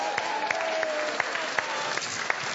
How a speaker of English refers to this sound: Yeah, huge round of applause to you all. Thank you for playing.